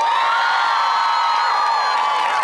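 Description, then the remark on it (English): A live audience cheers and applauds loudly and steadily, with high-pitched shrieks and whoops rising over a dense wash of clapping throughout. “I didn't factor into our time the amount of applause that each of these are going to get.”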